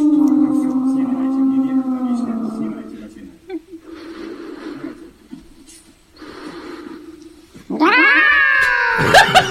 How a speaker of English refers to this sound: This is what a cat sounds like in a microphone with reverb on it.